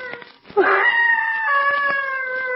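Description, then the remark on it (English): A piercing, human-like scream of terror from deep in the woods bursts out suddenly, then holds a loud, steady, wailing pitch for about two seconds, with no talking over it. “That cry sounded human. It's like a scream of mortal terror.”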